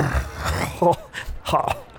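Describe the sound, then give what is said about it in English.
A low, guttural burp comes in a couple of rough, croaking bursts, with a rumbling throaty texture at moderate loudness. “That is a burp.”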